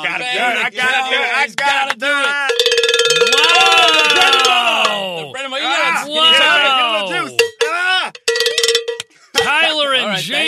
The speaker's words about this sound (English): All right, guys. Bang the cowbells.